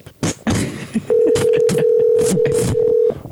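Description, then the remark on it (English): A steady, loud electronic phone ring tone sounds for about two seconds, a single unbroken buzz, with sharp clattering and muffled noises around it. “I know you can hear us through the ringing.”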